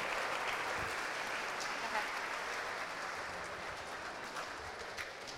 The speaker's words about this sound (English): How about a round of applause for Justin Marks and Catherine Legg? Both driving for Acura tomorrow.